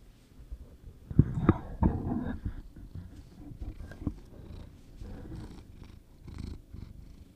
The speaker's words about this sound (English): Our tuxedo cat is right in the middle right now. Slipping away. Do you think you can make him purr? Make him purr.